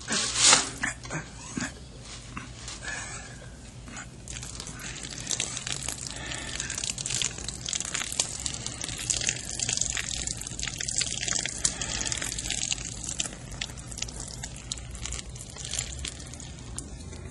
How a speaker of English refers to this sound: Then lift the can ever so slowly. Okay. Just enough so I can tip it freely to keep the pouring rate continuous.